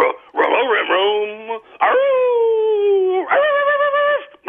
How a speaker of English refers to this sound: And that caller is a dog.